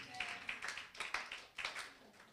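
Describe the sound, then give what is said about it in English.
An audience clapping hands, many overlapping sharp claps arriving in uneven bursts and swells, fairly quiet overall with no voices standing out. “Clap your hands and shout a big amen.”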